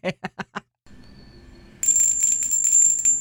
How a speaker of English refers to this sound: I hear bells. I'm not getting the long harmonic, like the sustain, the lasting, the sustain. But I can hear the full bell. Yeah. It doesn't have a lot of sustain. No, it doesn't. It doesn't have a ton of sustain. It's not a really resonant bell.